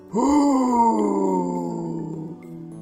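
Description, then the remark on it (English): A door lets out a long, loud groaning screech that starts abruptly and slowly sags lower in pitch over nearly three seconds, with no one talking over it. “No, I think that's the door screaming, not Harbinger.”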